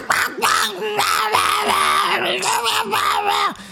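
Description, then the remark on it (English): A voice imitates TV host John Taffer screaming, loud and strained, in a series of hoarse, wordless bursts that run almost continuously for a few seconds before cutting off. “Like more than when John Taffer was screaming.”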